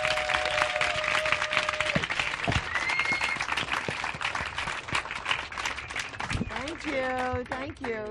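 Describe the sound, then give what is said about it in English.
An audience applauds steadily with dense, continuous clapping for the whole stretch, joined by a few whistles and a voice calling out over the noise toward the end. “Anyway, you want to, let's go applaud.”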